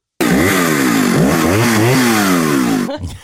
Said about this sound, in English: And then all of a sudden, chainsaws start.